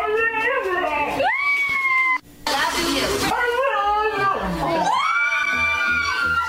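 A dog from Massachusetts, taught by its owner to say "I love you," lets out drawn-out, wavering howl-like vocalizations that mimic the rhythm of "I love you," loud, broken midway by a short burst of rushing noise.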